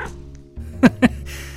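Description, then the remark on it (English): An overweight, creamsicle-colored cat with black ears gives two short, quick meows, one right after the other, against a quiet, faintly humming background. “My stalker turned out to be an overweight creamsicle-colored cat, with black ears and an indifferent disposition, aside from me scaring it.”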